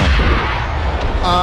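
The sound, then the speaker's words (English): A ship's cannon, aimed at the lead ship, fires in a loud, heavy boom with a deep rumbling roar that carries throughout, ending with a brief high, ringing whine. “Aim the cannon right at the lead ship and shout some of your precious cannon.”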